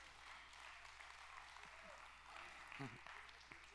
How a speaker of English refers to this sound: Come on up, brother. Y'all give him one more round of applause.